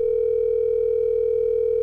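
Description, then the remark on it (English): A steady, continuous telephone tone hums at an even pitch throughout, the ringback of an outgoing phone call placed to wake a sleeping person, clear and unbroken with no voices. “If she sees it ringing, like if she rolls over and sees it ringing, she's going to know exactly what I'm up to.”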